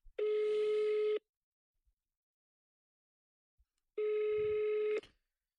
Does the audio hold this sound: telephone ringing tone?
yes